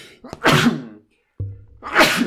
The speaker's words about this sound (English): Bless you. Excuse me.